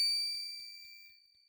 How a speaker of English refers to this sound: You want to add a chime to that? No, I'll do that in post. It's fine.